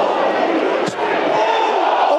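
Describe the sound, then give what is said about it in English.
A big football crowd at a friendly match reacts loudly to a near miss, a long-range volley from Michael Keithenbo deflected wide: a dense, sustained roar of many voices filling the whole moment, with one brief sharp knock cutting through early on. “Shot from distance from Keithenbo, takes a deflection wide, as you can tell from the crowd reaction there.”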